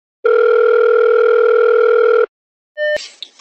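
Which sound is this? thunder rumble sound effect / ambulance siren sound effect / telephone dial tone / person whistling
telephone dial tone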